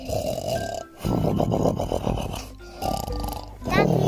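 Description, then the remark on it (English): A person loudly imitates snoring with voice, several rough, rattling snore sounds in a row with brief pauses between, forceful. “And some others like me snore like this.”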